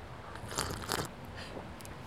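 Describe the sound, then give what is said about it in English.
A loud sip of hot coffee with half and half, with a short noisy slurp in two quick airy bursts in the middle, then quiet background. No one speaks. “I'm usually not a sipper. I did that for the microphone.”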